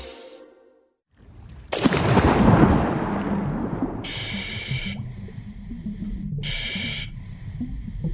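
A scuba diver breathing through a regulator underwater in the ocean in the afternoon: a loud, rumbling rush of exhaled bubbles, followed by two sharp, hissing inhalations over a steady low burble.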